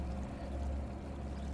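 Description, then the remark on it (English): Water sloshes and laps steadily around two small swan-shaped boats on a lake, a continuous wash with a low rumbling undertone and no voices. “Two lovers adrift on a lake, riding in a pair of swans. Or at least, small boats contrived to look like swans.”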